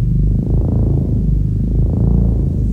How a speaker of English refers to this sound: I had an old ARP 2600, which is what I used to do R2-D2. And by reprogramming it, I was able to produce some wavering, low-frequency tones, which became the basic sound.